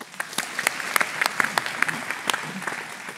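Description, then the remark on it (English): An audience in Portland, Australia, applauds at the first address of a woman candidate for a seat in Parliament, many hands clapping at once in a dense crackling wash, with a few sharper individual claps popping out. The loudness stays fairly even throughout, with no voices. “Applause.”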